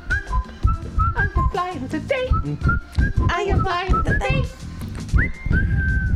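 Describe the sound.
A bright whistled melody weaves over a full live band, loud, rising in quick phrases and finishing on a long sustained note, with a voice briefly heard alongside.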